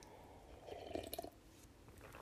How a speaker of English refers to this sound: Just having some water.